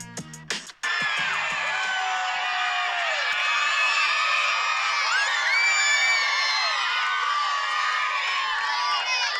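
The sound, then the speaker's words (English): A large crowd of young fans, from little kids to teenagers, screams and cheers loudly and continuously as golfer Jordan Spieth comes out, a dense wall of high-pitched shrieks and whoops that sustains after a brief, choppy opening moment. “All right, so I play that little screaming episode coming back here as we get ready for our moment with Giannis to close out today's episode.”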